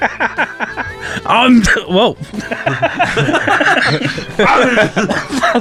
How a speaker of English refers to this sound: That was a cough and me trying to talk, and that was nasty.